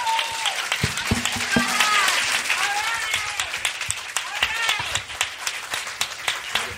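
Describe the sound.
An audience breaks into steady, loud applause for three guests, lasting several seconds: a dense patter of many hands clapping, with scattered cheers and voices rising over it.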